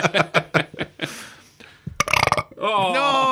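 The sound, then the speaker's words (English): A run of short, croaky gulping bursts followed by a longer, buzzy, drawn-out burp with a wavering pitch, fairly loud and with no talking over it. “I don't think I'm going to burp.”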